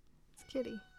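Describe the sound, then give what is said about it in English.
A pet cat lets out one short, nasal meow, rising and falling over about a quarter second against a quiet background. “Our cat's bothering us again. Different cat.”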